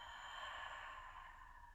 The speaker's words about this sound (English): So let's take a nice breath in through the nose and exhale through the mouth.